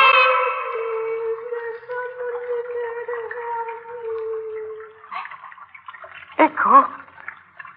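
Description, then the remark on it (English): Water dripping in a sewer: a long, echoing hum fades slowly, then a few sharp, plopping drips sound toward the end, with a brief watery gurgle. “Water. Water again. Gotta be careful.”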